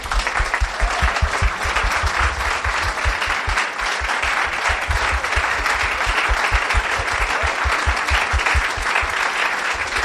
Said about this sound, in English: I think everybody will join me in a very big round of applause.